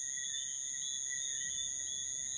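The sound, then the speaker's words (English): A steady chorus of crickets chirping at dusk in St. Lucia, a continuous high-pitched trill that never pauses, heard fairly softly over a faint low background hum with no voices. “My soundscape was the frogs and the crickets from 6:30 p.m. onwards, as it's dusk getting into sunset.”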